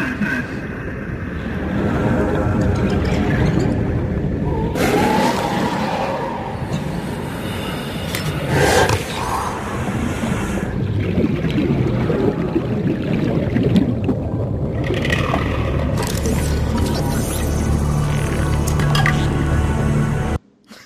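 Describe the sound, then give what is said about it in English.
Continuous watery splashing and sloshing from the video game Subnautica, a character jumping into and moving through water, with bubbling, dripping textures and a low rumble throughout; no one speaks. “Jumping on the water. Oh, is this water?”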